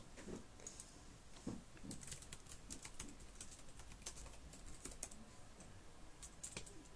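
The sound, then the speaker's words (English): Rapid, uneven clicking of keys on a computer keyboard, fairly quiet, with bursts of fast keystrokes and brief pauses throughout; no one speaks. “Didn't keep up with my typing.”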